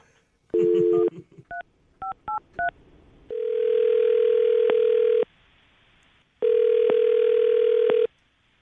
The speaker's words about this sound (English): All right, I'm going to dial the phone over right now.